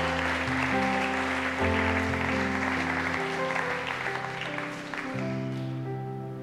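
A crowd applauds steadily for several seconds, a dense crackling wash of clapping, while sustained keyboard chords shift underneath; the clapping thins slightly toward the end.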